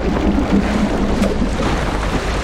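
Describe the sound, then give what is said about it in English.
Loud, continuous rush of a stormy ocean thrashing in the wind, a dense roaring wash with deep low rumble and no pauses, enveloping, with no voices. “The sound of the ocean essentially thrashing around you fills everyone's ears.”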